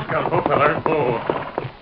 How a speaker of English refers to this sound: The Lone Ranger found the trail of one horse and signaled for Tonto to join him at that spot. Tonto rode to a stop where the masked man was waiting.